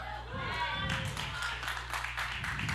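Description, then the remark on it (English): A group of women clapping, a steady patter of many overlapping claps that runs through the whole moment, with a low hum of crowd voices underneath. “I want to know why the women clap for both.”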